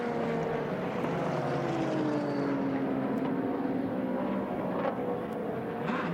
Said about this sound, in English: And as you can hear, the cars are out on the circuit and sounding absolutely phenomenal.